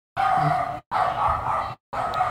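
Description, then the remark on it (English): A dog lets out three loud, drawn-out barks separated by brief pauses, the final one cut short, with no talking over them. “Shut your hungry ass dog up, please.”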